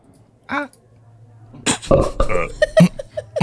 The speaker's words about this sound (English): Yeah, we'll be discussing and rating these beers with these suds ratings, plus our signature belching sounds that I hope you're familiar with.